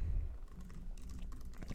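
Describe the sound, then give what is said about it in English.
Quick, soft typing on a Bluetooth keyboard, a light run of irregular taps, fairly quiet with no voices over it. “I was about to say, you were typing nothing. It's a Bluetooth.”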